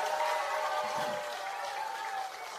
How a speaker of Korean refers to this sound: 우리 박찬대 최고위원 후보에게 다시 한번 큰 박수와 함성 부탁드리겠습니다.